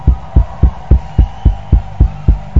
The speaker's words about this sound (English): Keep clapping your hands for Jesus.